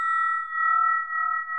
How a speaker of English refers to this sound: This bell that I'm holding now is called, this is what we call this a spinning bell.